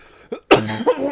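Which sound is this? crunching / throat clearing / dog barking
throat clearing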